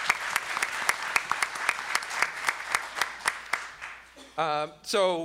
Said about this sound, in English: So please join me in giving him another round of applause for all of his hard work.